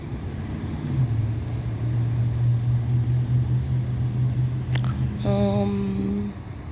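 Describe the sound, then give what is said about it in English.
A large truck's engine drones steadily, low and fairly loud, for several seconds as it passes, then a brief sharp click and a short, buzzy horn-like tone sound near the end. No one speaks. “That's a back license plate on the same vehicle. That's a large truck.”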